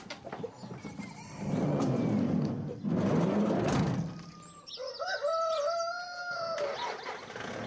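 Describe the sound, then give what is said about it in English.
Chickens in the back of a van squawk and flutter in a noisy commotion for several seconds, then a rooster lets out a long, loud crow, with no one speaking. “with the chickens in the back of his van”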